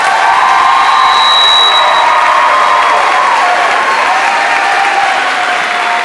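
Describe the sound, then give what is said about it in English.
A crowd applauds kindergarten students steadily for several seconds, a dense wash of clapping with scattered cheers and high whoops rising over it, loud throughout with no break. “Let's give all of these kindergarten students a round of applause.”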